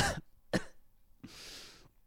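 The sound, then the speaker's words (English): Two sharp, loud coughs in quick succession, followed by a longer raspy throat-clearing exhale, all very close to the microphone with no talking. “I don't know if that cough really hit that microphone hard”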